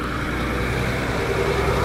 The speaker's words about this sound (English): So right now, there's a big yellow truck.